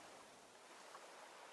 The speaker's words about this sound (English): The cool waves gently brush the shoreline, then retreat back into the glassy sea.